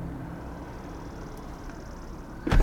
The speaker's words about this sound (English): Yeah, why'd you close your own door? What did we got to do? I reopened my door so that I can properly close it. All right, here we go. 3, 2, 1.